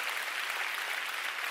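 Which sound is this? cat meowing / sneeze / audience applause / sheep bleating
audience applause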